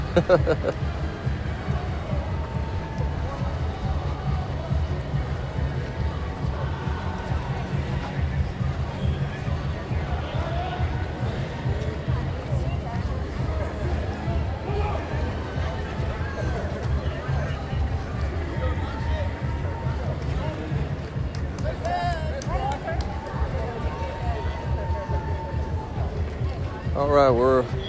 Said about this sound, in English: Buckhead Plaza. Oh, we got a good crowd on the sidewalk cheering everybody on.